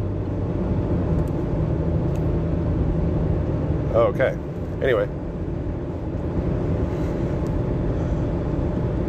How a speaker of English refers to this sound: Oh, that's a semi-truck.